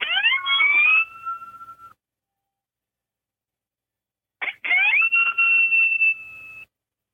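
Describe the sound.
Two rising, wailing siren imitations blown on an open-reed predator call, each sweeping upward then holding a steady pitch before cutting off, separated by a few seconds of silence. Fairly loud.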